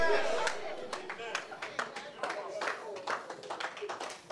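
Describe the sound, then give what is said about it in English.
A crowd claps in a church, scattered and uneven sharp claps ringing out over a murmur of voices and talk, moderately loud and continuous throughout. “You are not clapping for me.”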